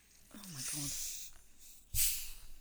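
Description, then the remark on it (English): A bottle of Cava Rosada, a pink sparkling wine from Catalonia, is uncorked with a sharp pop near the end, and a bright foaming fizz and hiss follows. A voice makes a brief exclamation shortly before the pop. “About to pop a bottle of Cava Rosada from wonderful Catalonia.”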